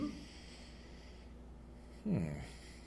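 A single short sniff breaks a quiet stretch near the end, a quick breathy intake through the nose as someone smells a cup of brewed tea.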